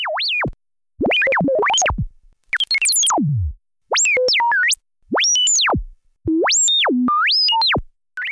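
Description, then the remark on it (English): A Moog Concertmate MG1 synth robot voice: about six bursts of bright, warbling electronic tones that swoop and step up and down in pitch, separated by short silences, with no talking. The Concertmate is a small synth made by Moog and sold at Radio Shack in its Realistic line. “And they can make a pretty good attempt at iconic robot voices.”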